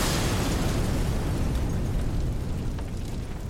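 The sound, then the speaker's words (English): A huge, deep explosion aboard a burning oil tanker in Bantry Bay at about 1:06, flames leaping hundreds of metres high; it roars with sustained rumbling, a dense wall of low-end blast noise that holds steady before easing slightly, loud with no voices. “A massive explosion takes place on board the Betelgeuse.”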